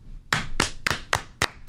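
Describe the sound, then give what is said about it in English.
Five sharp, crisp hand claps in a steady, fairly quick rhythm, imitating the rhythmic group clapping of waiters and waitresses at a Buca di Beppo restaurant for a happy birthday song, with no talking over them. “and all of a sudden all the waiters and waitresses walk out, and they're like, all right, everybody join me in clapping, and they go...”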